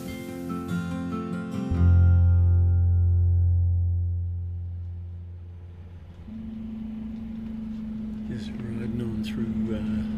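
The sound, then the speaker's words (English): A steady low engine drone fills the interior of a moving airport bus in central Wellington, rising and easing as it shifts gears, with a sustained mechanical whine and faint background murmurs and clatter. “Central Wellington on the airport bus, flown down,”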